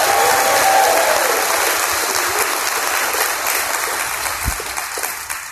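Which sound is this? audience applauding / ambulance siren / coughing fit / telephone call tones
audience applauding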